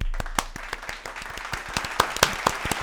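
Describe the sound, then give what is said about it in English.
A short burst of applause: many hands clapping in a quick, uneven patter for a few seconds, moderately loud, with no voices over it. “Can we get some audience claps?”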